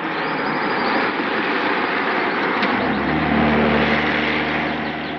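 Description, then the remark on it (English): A motor vehicle rumbles along a road, its broad engine and tire noise swelling slightly toward the middle before easing off as it passes. No one speaks. “Here comes the car.”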